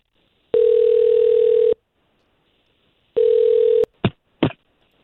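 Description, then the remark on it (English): A steady telephone dial tone hums for just over a second, falls silent, returns briefly, then two quick beeps of a number being dialed follow. No one speaks. “We'll try to call him right now.”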